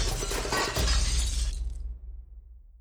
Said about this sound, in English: Vroom! They zoomed off the roof, flew through the air, and crash! Smashed into the roof of the van. The van and ring car skidded to a stop.